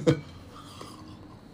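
A tea cup gives one sharp, ringing clink as someone takes a sip, followed by a second of soft, quiet movement. No one speaks.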